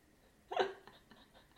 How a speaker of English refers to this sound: Our dog is dreaming. Our dog's having a beautiful dream.